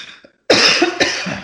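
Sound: cough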